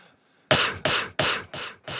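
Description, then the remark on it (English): Five harsh, loud coughs in quick succession, each a sharp burst right up against the microphone, coming at a steady rhythm with no talking around them. “What if I did that just to highlight the coughs when I have a cough coming?”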